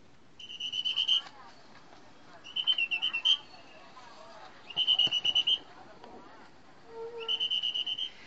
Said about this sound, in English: who was traveling between Ooty and Coimbatore, and she says that there was a bus conductor who was blowing this annoyingly noisy whistle standing right next to her, literally in my ear. And this is how it sounds like.